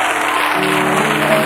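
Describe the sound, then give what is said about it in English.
A church audience claps their hands together in a dense, steady wash of applause, loud throughout, with a sustained tone entering partway through beneath it. “Now I want to see what would it sound like when the Lord said, clap your hands, all ye people.”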